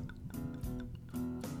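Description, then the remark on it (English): Basil Hayden's bourbon, 80 proof, being poured into a glass, with a few soft glugging bursts over a steady ringing tone, quiet, no voices. “I don't know if you can hear that pouring, but it always sounds so good.”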